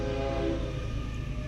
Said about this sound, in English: Here comes our train. It's a big one too